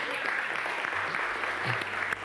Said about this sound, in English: And applaud the Lord.